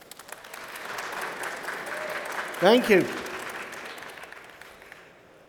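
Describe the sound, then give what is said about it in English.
Steady applause from a live audience in the conference theatre at Oceanology International 2022 fills the whole stretch, a dense wash of many hands clapping, and a voice briefly speaks over it near the end as the clapping fades. “Can you all clap so the listener knows we're really live?”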